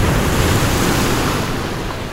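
Steady rushing surf of waves breaking on a beach, loud, a continuous wash of noise that eases slightly toward the end, with no voices.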